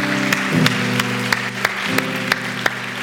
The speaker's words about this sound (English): Can we give these three individuals that raised their hand a huge round of applause?